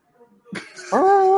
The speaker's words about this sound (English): Is that your dog going? No, that's my dad talking to my dog.